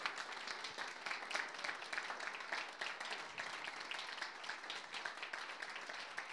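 A crowd applauds steadily, many hands clapping in a dense, continuous patter that holds at an even loudness for several seconds, with no one speaking over it.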